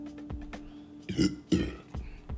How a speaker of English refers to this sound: Excuse me. I'm sorry, y'all. Did I burp? I'm sorry.